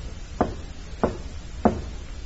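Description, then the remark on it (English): A man knocks on a side door of a warehouse building at night: three evenly spaced sharp, solid raps about half a second apart, heard alone over a faint steady background hiss with no one speaking. “He knocks, pauses, then knocks again.”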